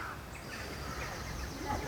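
bird, birds calling

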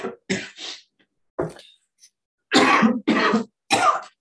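human body sound, coughing fit

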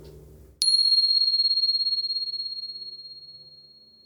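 signal or alarm, meditation bell ringing

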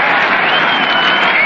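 crowd, stadium crowd roaring

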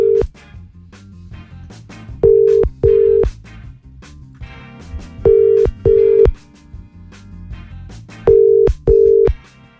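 signal or alarm, telephone call ringing tone

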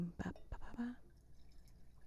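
food or drink, drink being poured

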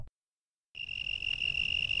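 insect, crickets chirping sound effect

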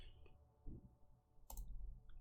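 dice being rolled

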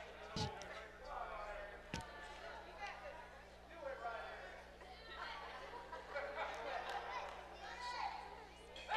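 impact, arrow shot hitting target

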